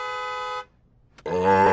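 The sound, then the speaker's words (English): Two loud, sustained vehicle horn honks separated by a brief pause, the second blast richer and slightly louder than the first, with no one talking. “Looks like my horn honking got the attention of”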